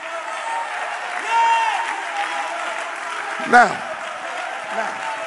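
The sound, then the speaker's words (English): A large audience claps and cheers continuously, a dense wash of applause with shouts and whoops rising above it, at steady loudness with a brief louder burst midway. “Now, while you're clapping, your body can get healed.”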